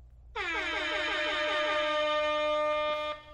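A Rasta air horn starting the 2016 Rio Olympic triathlon race with the athletes on the start line: a loud, sustained blast of about three seconds, with a rich harmonic tone that wavers in a rapid, rhythmic warble before cutting off.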